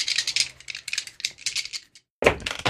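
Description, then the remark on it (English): Rapid clattering and rattling of dice shaken and tumbling for about two seconds during a tabletop role-playing game, a brief pause, then a louder, sharper clatter as they land, clear with no talking. “If you jinx me, I'm gonna throw these dice at you.”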